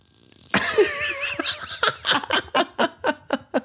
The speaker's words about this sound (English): The fuck's that? What the fuck is that? It's my nose. It's like a little creature living in your face.